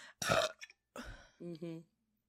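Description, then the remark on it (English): A loud burp in several gurgling bursts, ending with a drawn-out, throaty, almost voiced belch before falling silent. “You knew it was coming. It was my burp.”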